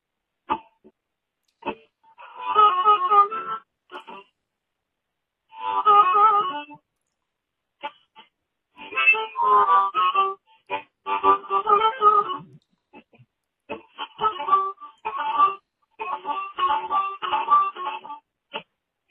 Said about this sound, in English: If you're watching the video of this, watching the spectral graph of a harmonica through a phone is very interesting to look at.